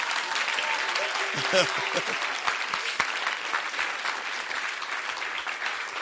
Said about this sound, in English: I thought I heard claps. Were you clapping?